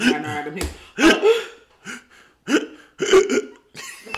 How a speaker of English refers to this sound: Let me stop before I get hiccups myself. She got hiccups, y'all. You good?